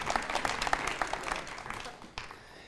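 A burst of audience applause, dense overlapping claps at a steady moderate level that gradually thin out and fade over a few seconds.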